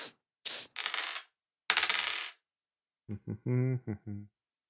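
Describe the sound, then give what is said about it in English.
A few quick bursts of rattling, clattering hard objects, like dice being shaken and rolled on a surface. A short voiced sound follows after a pause. “Yeah, rolls dice.”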